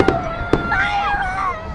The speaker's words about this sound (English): So this will be a 14-minute display of fireworks tonight. And the Jackson Firefighters Association are the ones credited with getting the funds for this.